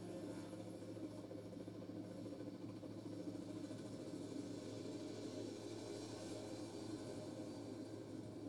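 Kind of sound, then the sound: vehicle, police helicopter flying overhead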